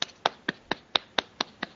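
A lone pair of hands claps eight quick, sharp times at a steady, even pace, thin and close-sounding, with no voices or other sounds around it.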